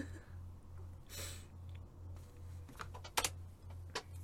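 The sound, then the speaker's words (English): Quiet, irregular tapping of computer keys, a few sharper clicks standing out near the end, over a steady low electrical hum with no one speaking. “Ooh, wrong keyboard.”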